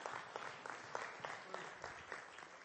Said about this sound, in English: Come on, let's give Jesus a round of applause this morning.